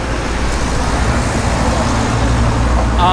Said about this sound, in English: That was also a practice truck.